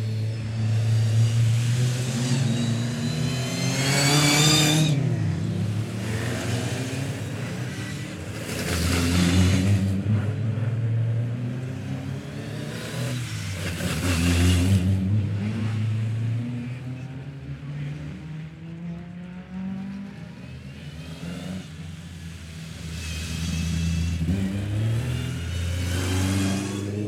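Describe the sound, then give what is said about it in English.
A Ford Cortina race car engine revs loudly, its pitch surging up and dropping back in several bursts over a steady throaty idle, with no voices. It is the last Cortina, driven by Tiff Nidell, leaving the assembly area onto the circuit before the start of the race. “Last car to leave, the last Cortina, driven by Tiff Nidell, out onto the circuit.”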